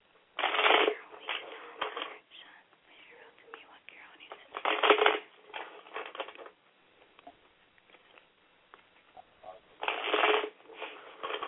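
Tarot cards being shuffled, with three loud riffling bursts spaced several seconds apart and softer card rustling and handling in between, with no voices.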